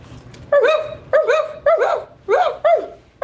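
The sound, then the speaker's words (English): A voice imitates a dog barking, giving five short, loud, harmonic barks in an uneven rhythm, with a quiet background between them. “That bark is not even good enough, bitch.”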